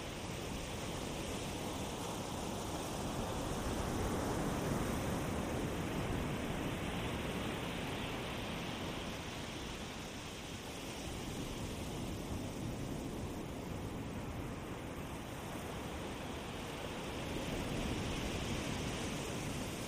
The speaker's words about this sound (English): Just spend a few moments enjoying the sound of the waves crashing on the sand.